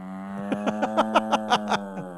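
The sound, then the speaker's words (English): A person's voice imitates a cow with one long, steady, low moo, pulsing with a rhythmic rattly flutter throughout. It is moderately loud and has no other talking. “That's clearly somebody doing it, not a real cow.”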